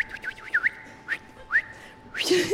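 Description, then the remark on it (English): A person whistles a quick run of short, sharp rising notes, then a louder, shrill sweeping blast at the end, like a shepherd calling working dogs. Fairly loud, with no talking. “Oh boy, I'm a great whistler. Hey, how about this whistle?”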